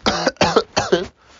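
coughing and throat clearing

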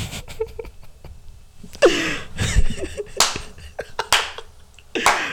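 slow clap

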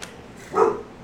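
guard dog barking

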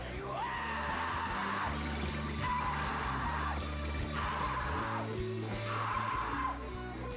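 singer screaming

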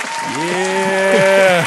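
studio audience clapping

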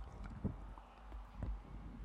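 dog licking the microphone

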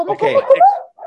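dog barking

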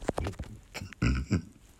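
burp

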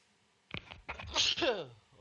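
sneeze

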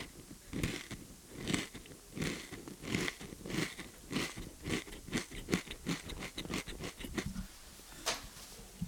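crunching on goldfish crackers

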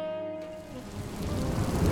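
heavy rain with thunder

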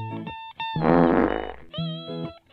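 fart sound

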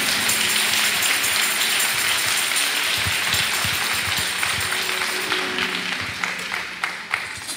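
audience clapping

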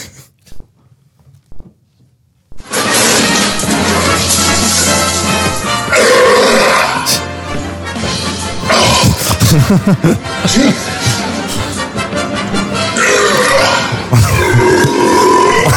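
lion roaring

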